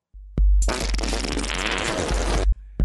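A loud, dense run of fart sounds strung together as a fart-sound remix of a song, buzzing continuously for about two seconds between short clicks at the start and end, with no talking.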